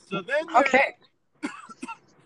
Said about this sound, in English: Sorry, I got a little cough.